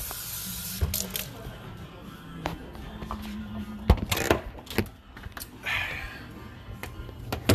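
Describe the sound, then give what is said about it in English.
Water runs and splashes in short bursts as a glass is filled again with cold water indoors, with clinks and clatter mixed into a busy background and faint music underneath. “We might hear some music as I'm filling up my glass again with cold water.”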